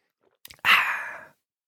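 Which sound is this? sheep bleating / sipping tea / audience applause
sipping tea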